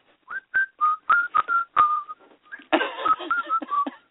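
Someone whistles the Muppet Show theme tune, bouncy and upbeat: a quick run of short, clear notes with brief gaps, then a breathier, rougher passage before a few more bright notes. No talking.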